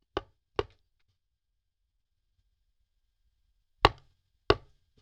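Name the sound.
knocking on a door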